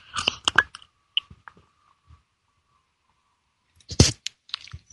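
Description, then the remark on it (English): Sipping of hot morning tea just after 8 a.m. in Los Angeles: a quick burst of slurps and wet mouth clicks, a quiet pause with faint swallowing, then another noisy sip near the end. No one speaks. “And it's time for me to take a sip of my tea.”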